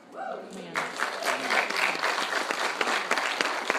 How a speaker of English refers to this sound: So part of my job is to help you. That's a good place to clap and thank God.